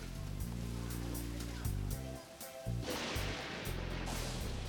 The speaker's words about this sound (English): Wow, listen to a downpour out there.